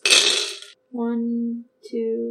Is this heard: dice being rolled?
yes